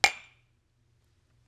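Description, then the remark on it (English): A single bright clink of drinking glasses tapped together in a toast, crisp, with a short ringing tone that fades within a fraction of a second into quiet. “Do you want to clink? Sure. Let's get that good clink in.”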